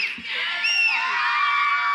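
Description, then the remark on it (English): A crowd of children cheers and shrieks together, voting by cheer for a child's foot house, a dense, high-pitched wash of overlapping voices with squealing pitch sweeps, loud and sustained for the full two seconds. “Cheer.”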